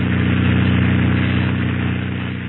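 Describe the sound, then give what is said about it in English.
A small airplane engine drones steadily as it taxis on the ground toward a shack after landing, a loud, continuous buzzing rumble with a deep hum, fading slightly toward the end. “Now we'll taxi over to that shack and give it a look-see.”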